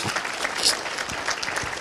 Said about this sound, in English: Somebody say amen. It was a holy. I'm going to wait while you clap your hands there.